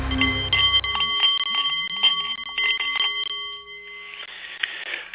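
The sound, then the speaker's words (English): A Nepalese meditation bowl chimes with a steady, shimmering ring that sustains throughout, layered with lighter metallic strikes and swells, fairly loud, with no voices. “The Nepalese meditation bowl is chiming, and that means it is time for The Art of the CEO”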